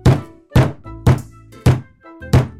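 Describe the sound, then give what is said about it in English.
Five heavy, evenly spaced knocks on the wooden front door of a house, loud, each a dull thud with a short ringing decay, with no voices. “And there's a knock at the door.”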